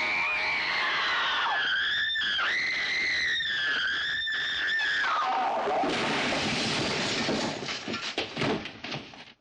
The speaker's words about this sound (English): Slowed down with a blood-curdling scream over the top. It does exactly what you'd expect from a chilling death scene.